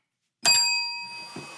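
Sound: bell ringing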